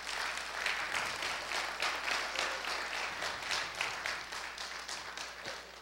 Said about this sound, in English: Someone give the Lord a great big hand clap this morning.